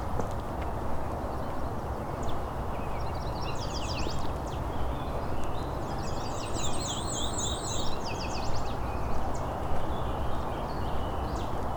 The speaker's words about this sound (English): Soft warble is probably a black and white warbler.